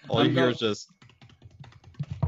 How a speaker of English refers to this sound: Why aren't you just telling me that I'm being loud when your typing is louder than anything I'm doing?